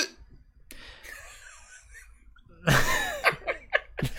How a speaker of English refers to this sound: That was a phenomenal hiccup.